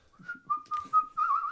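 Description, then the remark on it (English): A person whistles a short, wandering tune, a few sustained notes gliding together before rising into a brighter, louder phrase at the end, with no talking. “It is how I imagine someone wank whistling.”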